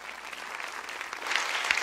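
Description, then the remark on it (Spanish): A church audience gives God a loud round of applause after a prayer, a dense wash of many hands clapping that swells slightly louder toward the end, with no voices standing out. “Dele un fuerte, fuerte aplauso a Dios.”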